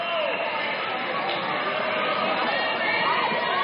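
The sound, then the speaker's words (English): A steady wash of crowd chatter fills an indoor gym during a high school boys' basketball game at a doubleheader, many overlapping voices murmuring at a constant, fairly loud level with no single speaker standing out. “Big crowd on hand here tonight for the Twin Bill.”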